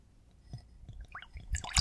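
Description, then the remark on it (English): A short, quiet pour of liquid into a glass, with soft splashes and drips that build toward the end, with no one talking. “So I'm just gonna pour a little bit.”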